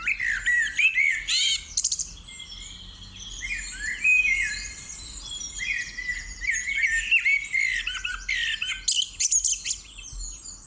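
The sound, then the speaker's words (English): A female blackbird sings in a park, a continuous run of rich, fluting and squeaky phrases, with several other birds, including wood pigeons and blue tits, twittering around it. No one speaks. “It's actually a blackbird.”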